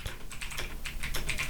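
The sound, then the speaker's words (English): Rapid keystrokes clatter on a computer keyboard, a steady run of sharp clicks with no voices, filling the short moment with busy typing. “You can hear me typing.”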